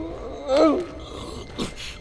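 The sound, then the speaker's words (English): A dog lets out a single short, rising-then-falling whine, followed by a faint shuffle and quiet background rustling, as it is led down a tunnel. “Come on, dog. Down the tunnel to Haven.”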